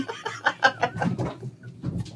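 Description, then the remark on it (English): A cat makes a strange, loud run of rapid, chattering cries, about eight or nine short harsh calls in quick succession, with no talking. “Yeah, if you guys hear a crazy thing in the background, that's a cat.”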